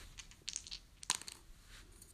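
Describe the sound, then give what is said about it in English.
Dice are rolled to determine a magic item, tumbling and clattering across a hard table in a quick burst of small sharp clicks, with a louder knock near the middle before they settle on 89. The sound is faint and there is no talking. “So let the dice land where it may.”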